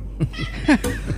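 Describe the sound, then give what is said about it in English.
A cat gives a few short, wavering meows that rise and fall in a mournful, sing-song way, moderately loud, with a brief gap between cries. “So he started singing the blues.”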